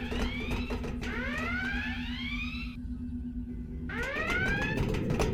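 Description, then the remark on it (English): A shuttle bay launch alarm blares with loud, rising electronic whoops that repeat in long sweeps over a steady low mechanical hum, pausing briefly before the climbing wail starts again. No one speaks. “It's coming from the shuttle bay. The launch alarm? Has to be a malfunction.”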